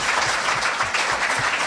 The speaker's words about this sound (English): Please give a round of applause to our panelists, Jeff Davis, Jane Espenson, Richard Haddam, Jose Molina, and Ben Edlund.